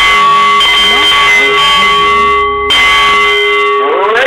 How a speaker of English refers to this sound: The Nepalese meditation bowl is chiming, centering your mind and delight on The Art of the CEO, the show that brings you the most fascinating and, well, really the most helpful people from around our terrestrial orb.